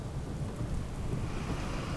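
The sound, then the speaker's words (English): Steady thunderstorm noise of heavy rain and gusting wind, a dense continuous roar with a deep low rumble underneath, loud and unbroken for the whole stretch with no voices. “The wind and rain were picking up, and the sky had an unpleasant greenish-yellow color.”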